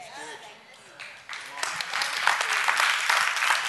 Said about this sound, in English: Oh, you can clap. You can clap. That's amazing. Hey, you can clap as well. Between songs, you can clap as well. We'll allow that.